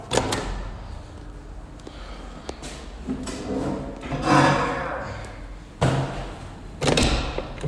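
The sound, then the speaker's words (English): A door opens and shuts, with several sharp thuds and clunks spaced a few seconds apart over a low rumbling background, with some shuffling noise in between. “God damn it, now I have to put something in each door.”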